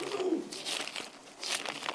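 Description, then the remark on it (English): Crisp papery rustling as thin pages of a Bible are turned to Matthew chapter 5 in the New Testament, several soft brushing flips in quick succession over two seconds, with no talking. “Let me turn there and read it, be sure I get it right.”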